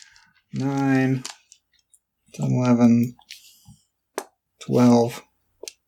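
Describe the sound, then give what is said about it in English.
A few sharp clacks of dice hitting a table come near the end, separate and brief, after three drawn-out wordless vocal sounds from a voice. “I don't have enough dice for this.”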